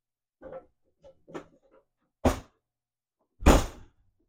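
A few soft rattles and clicks of handling, then a door is shut hard by someone going out, with two heavy, booming thuds about a second apart, the second louder. No voices are heard.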